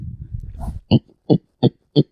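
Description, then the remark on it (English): A person imitates a pig, making four short, evenly spaced grunting oinks, preceded by a low rumbling snort-like breath. “That does sound like a pig.”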